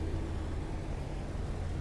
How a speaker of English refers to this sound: There's a car driving through this parking lot, and it is smoking up a storm, man. It's smoking up a storm.